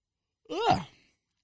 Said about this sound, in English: So it took a long time to get today done, and it was pretty hot, and truthfully, I'm very tired. This is 3 weekends in a row driving to Ohio and back, you know, working all day Friday, drive 5 hours, airing dogs. I'm even yawning now.